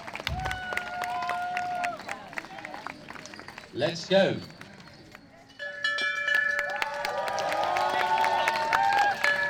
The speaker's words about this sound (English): And with the sound of the bell, the games are underway. There's then the gentle sound of clapping and cheering you can hear all around the grounds.